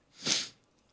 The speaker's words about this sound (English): I had a sneeze, excuse me.